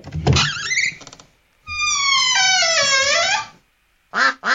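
A cartoonish duck sound effect in a door-choosing game: a scraping burst, then a long warbling, descending call, followed after a pause by two short, nasal quacks, loud with no talking.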